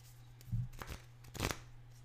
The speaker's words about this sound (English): So we're going to shuffle the cards.